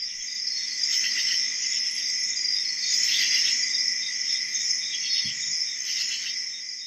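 A dense chorus of crickets chirping steadily and continuously, a high, shimmering trill that stays at an even, moderate loudness throughout with no voices present.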